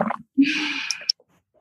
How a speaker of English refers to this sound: I need a sip of water.